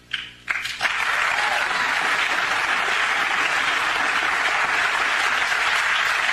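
A crowd in a recorded clip bursts into loud, sustained applause after a brief moment, the dense crackle of many hands clapping holding steady and unbroken to the end.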